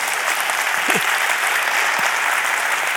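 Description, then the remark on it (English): Steady, dense applause from an audience during a Christian sermon, a continuous wash of many hands clapping at a fairly loud, even level, with a brief vocal murmur near the start. “You can clap at that.”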